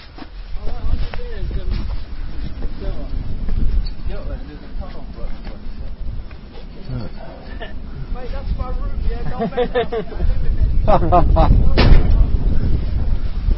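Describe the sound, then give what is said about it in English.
A heavy exit door at the top of a flight of steps is unlocked, then clunks and thuds open, letting in a loud, steady rush of outdoor rain and wind in daylight that swells toward the end, with a man talking. “Open the door, and we're out into the rain and the daylight.”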